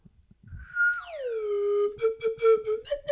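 A slide whistle glides smoothly downward in pitch, then holds a steady, fairly loud note for over a second, with choppy breathy bursts breaking over the tone near the end.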